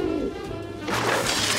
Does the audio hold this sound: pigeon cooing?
yes